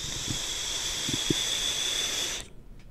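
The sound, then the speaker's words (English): A steady airy hiss of vape smoke being blown out through one nostril, lasting a couple of seconds before cutting off abruptly into near silence. “Fucking, that was the single nostril dragon.”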